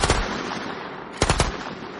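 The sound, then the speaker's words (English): Rapid automatic gunfire as special enforcers open fire on a cab that has smashed through a wooden barricade: a short burst of sharp cracks at the start, a steady noisy rumble, then another quick burst of three or four loud shots near the end. No voices. “And then you hear the special enforcers starting to open fire on the cab.”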